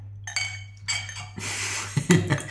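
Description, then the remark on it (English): Colonel India Pale Ale Citra, a 7.2% IPA, pours into a glass in a few short gurgling bursts with bright, ringing glassy tones and a couple of clinks near the end, over a steady low hum, with no talking. “Just into my glass or...?”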